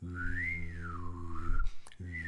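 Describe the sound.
A person hums and whistles at once in front of a microphone to imitate a laser sound effect, the whistle swooping up and down over a steady low drone, breaking off briefly near the end before resuming, close and moderately loud.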